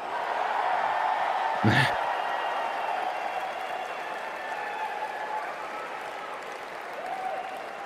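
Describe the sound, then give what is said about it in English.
A crowd applauds and cheers steadily for several seconds, a dense wash of clapping with whoops and shouts mixed in, staying loud throughout with one brief sharp burst near the start. “Because like you know, during these things, you want to keep going, but he just sits there and basks in the applause, the cheering.”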